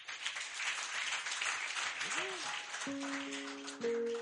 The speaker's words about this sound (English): Let us clap for Jesus.